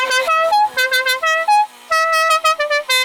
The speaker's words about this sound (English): We need a way, firstly, to be able to indicate which way I'm beeping my horn. Sometimes, right, I want to just like, you know, slam my hand on that horn because of the guy to my left.